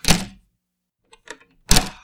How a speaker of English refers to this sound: Against his custom, he peered cautiously about the room and proceeded to lock himself in. In fact, he double-locked the door.